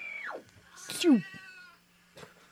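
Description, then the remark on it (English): A cat meows twice: a quick falling cry followed by a louder, drawn-out meow that slides down in pitch, then a faint noise near the end. “The cat's back in the room.”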